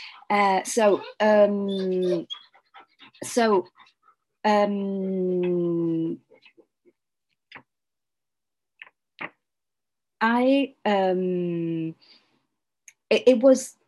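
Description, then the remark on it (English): A dog, upset because a storm is coming, whines and whimpers in several drawn-out bursts, some long and wavering, others short and sharp, separated by quiet pauses. “I don't know if you hear some noise, it's the dog. There is a storm coming, and it is upset.”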